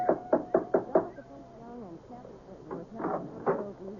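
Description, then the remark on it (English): A big brass door knocker on the front door of a house on a side road strikes five times in quick, even succession, loud with a faint metallic ring, then people begin talking. “There was a big brass knocker on the front door.”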